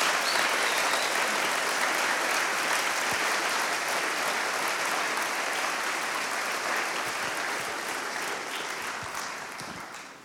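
An audience applauds steadily for God one morning for about ten seconds as people sit back down, a dense wash of clapping hands that holds its level before tapering off at the end, with no talking over it.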